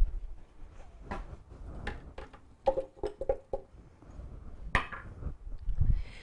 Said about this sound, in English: I'm gonna put my cashews in the blender. I am gonna add 1.5 frozen bananas to the cashews. I slice my bananas really thin and I put them in a Ziploc bag and put them in the freezer for a minimum of 2 hours, and they're nice and frozen.